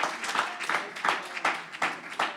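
A crowd claps hands together in a steady rhythm to give God praise, sharp bursts landing roughly three times a second, moderately loud, with no speaking over it.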